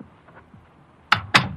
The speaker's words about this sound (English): One day, I came home, I opened the door, and went in.